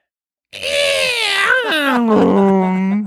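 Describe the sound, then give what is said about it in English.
A person imitates Godzilla's roar with one loud, sustained, strained vocal screech lasting nearly three seconds. It begins high and wavering, then slides lower into a rough, grinding tone. “But could you do me your best Godzilla impression?”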